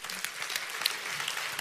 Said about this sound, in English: That's really, give everybody a hand. That's really fantastic.